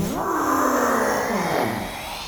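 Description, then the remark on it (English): An unearthly ghostly scream from an approaching ghost with a missing arm and shattered legs: one loud, sustained wail that rises, then slowly bends downward in pitch over about two seconds, with a harsh, animal-like quality and no talking. “It moves towards you and unleashes an unearthly scream.”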